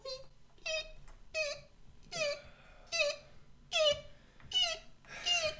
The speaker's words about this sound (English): It then goes and begins to wheel very slowly down the corridor. You hear one of its wheels is squeaking about every half a rotation.